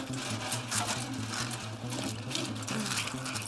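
Lighter fluid spraying onto a bundle of fake identity documents in a trash can: a steady, hissing stream with faint pulsing bursts, running continuously over a low, droning hum with no voices.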